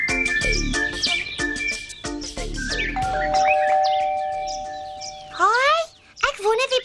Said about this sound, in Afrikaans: Wie dit ook al is, klink baie ongeduldig. Een mens lui moes nie een klokkie so baie na mekaar nie.